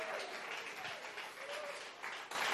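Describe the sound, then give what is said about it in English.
An audience applauds steadily, a dense wash of many hands clapping together, with faint voices mixed underneath and a brief swell in intensity near the end, giving the Lord a clap of praise during a church sermon. “Give the Lord a big clap of praise here.”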